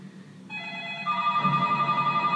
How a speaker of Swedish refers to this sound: Nu ringer alla telefoner samtidigt.